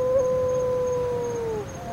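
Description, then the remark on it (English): A wedge-tailed shearwater gives a long, drawn-out moaning wail at about 8 o'clock at night at roadside burrows on Kauai, one steady mid-pitched tone that sags slightly at the end, heard alone over a low background rumble. “What I can see are three wedge-tailed shearwaters trying to resuscitate birds that have been knocked down by cars.”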